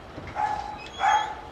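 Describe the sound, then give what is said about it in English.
A small Shih Tzu mix dog at a family home in the Woodlawn neighborhood lets out two high-pitched, slightly drawn-out barks about half a second apart, moderately loud against faint background noise, with no one talking. “with their two young children and Buddy, the Shih Tzu mix”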